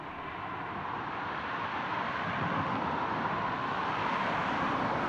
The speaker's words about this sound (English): I hope that you find this reflection helpful in your own life, and I'll leave you now to listen to the traffic.